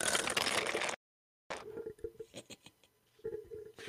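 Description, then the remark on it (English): A burst of rushing noise cuts off, then dice clatter and tumble down through a dice tower, a quick run of sharp clicks and rattles settling toward the end. “And what's that sound? Yes, that is a dice tower.”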